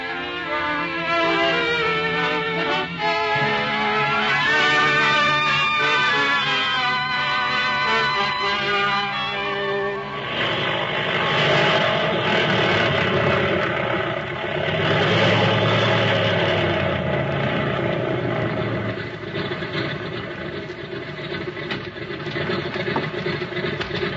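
A propeller airplane engine runs steadily throughout, a loud droning hum that grows rougher and fuller partway through, with no voices.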